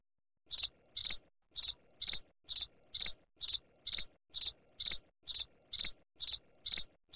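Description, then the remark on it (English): Crickets chirp in a steady, regular rhythm, about two short bright pulses per second, clear, with no voices or other sounds around them. “Crickets?”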